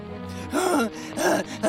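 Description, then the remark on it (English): A bat pants heavily in a chimney, two strained, breathy gasps with a groaning edge, fairly loud, separated by a brief pause and ending on a sharp intake. “bat was panting, ready to fly out of the chimney, carrying the bag of fruit candy.”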